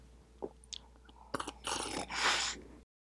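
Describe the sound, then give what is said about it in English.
A few small mouth clicks, then two long, wet slurping sounds, loud and airy, one after the other as two people slurp drinks together in unison. “There's nothing wrong with slurping in unison. Let's do it together.”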